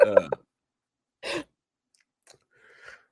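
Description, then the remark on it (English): A brief voiced catch of breath, then a single sharp, noisy sneeze burst, followed by a few faint breathy sniffs and rustles. “I'm sneezing.”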